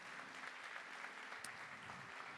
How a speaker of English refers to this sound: Can y'all give the Lord a hand clap of praise this morning?